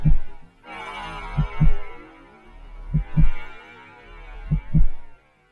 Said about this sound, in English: Atticus could hear his heartbeat. Hear the intricate rhythm of his breaths.